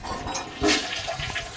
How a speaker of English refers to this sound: So see that when you flush it, it goes down here, it goes into the pipes.